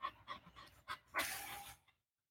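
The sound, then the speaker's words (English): A dog pants in quick, rhythmic breaths, followed by a longer breathy exhale before falling silent. No one speaks. “He's just panting down there.”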